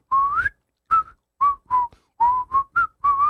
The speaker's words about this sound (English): I can whistle. I can whistle, but now you go.